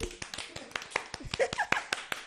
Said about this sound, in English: Let's give a clap for her tits.